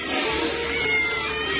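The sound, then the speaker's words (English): A white fluffy kitten meows in a steady, drawn-out, high-pitched cry, fairly loud, filling the short moment with no one talking. “Kittenell is a big crate of white fluffy kittens that sits next to the commode.”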